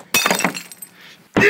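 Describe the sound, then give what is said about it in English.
A ceramic beer stein, hand-painted at a paint-your-own pottery place, is deliberately smashed with a sharp, loud crash, followed by a second of rattling, tinkling shards that fade out before a voice abruptly shouts. “I have two things to destroy today. The first one is a beer stein that I painted at one of those paint-your-own pottery places with my stupid ex-boyfriend.”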